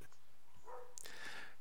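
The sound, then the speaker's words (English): A dog gives a few short, sharp barks and yips in quick succession, muffled, with no one talking over them. “The more you tell him to shut up, the more he's barking.”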